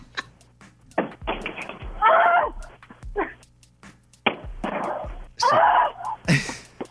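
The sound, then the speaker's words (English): A TV is knocked over and then beaten on its backside, giving a string of irregular, loud thumps and crunching, rattling impacts with short gaps between bursts. “She knocked it over immediately, then just started beating on the backside of it.”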